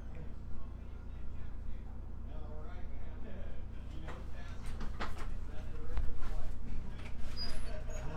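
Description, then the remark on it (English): A door opens partway through with a few sharp clicks and rattles of the latch over a steady low hum and faint murmuring voices. “If you open the door, don't ask what the password is.”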